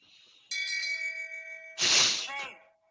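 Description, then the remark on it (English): A single clear bell strike rings out with a steady, sustained tone for over a second, then a loud, breathy burst of voice-like noise cuts in and fades away. “Don't shame bell me.”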